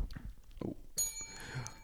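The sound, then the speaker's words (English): A small bell is struck once, bright, its tone ringing on and slowly fading, after a few soft rustling, chewing-like noises. “Now we have to put it away because that was the fourth ring.”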